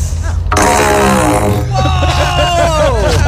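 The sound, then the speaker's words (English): A loud fart blown by a woman through a long, roughly 6-foot PVC pipe pointed at the microphone, a resonant, buzzing drone lasting a few seconds and sagging in pitch, with excited voices breaking in over its end. “I have this PVC pipe, and I'm going to fart in it.”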